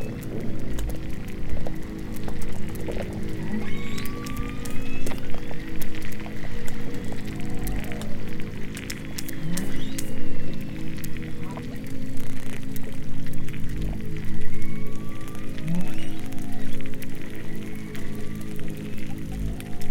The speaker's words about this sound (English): And I spoke with all the scientists on board and I went out recording, and this was the first time I recorded a bearded seal.